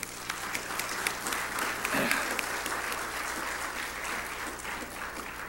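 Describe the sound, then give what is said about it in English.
A crowd applauds veterans steadily for several seconds, a dense, even patter of many hands clapping at once, with a faint murmur of voices beneath it. “I like for us to just give them a clap.”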